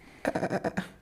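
A goat bleats once in a loud, wavering cry that breaks into several quick pulses, lasting under a second, close to the microphone, with no talking.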